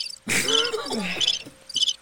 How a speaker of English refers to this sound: Hit the noise. Oh, the crickets.